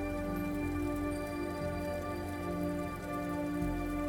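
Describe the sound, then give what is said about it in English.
Steady, continuous storm rain hisses evenly throughout, with a low sustained drone humming underneath and no voices present. “The wind and rains have no effect on you.”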